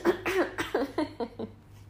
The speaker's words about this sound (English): Who wants to hear me clear my throat? But I have to clear my throat right now, so I'm going to. Ready? Hold on.